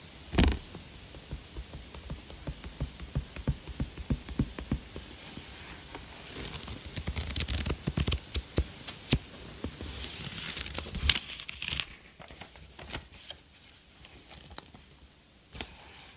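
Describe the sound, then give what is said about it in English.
Soft papery rustling and crisp flicks as book pages are turned by people wearing gloves, coming in irregular bursts over a quiet hiss, with no one speaking. “So this right here is a 40-minute video of people turning pages in a book with no speaking”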